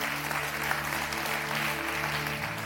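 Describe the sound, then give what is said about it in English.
A crowd claps steadily throughout, a dense wash of applause from many hands filling the space, with a faint low hum underneath and no clear speech. “Come on, you're going to clap.”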